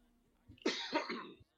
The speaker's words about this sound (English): Who coughed in the background?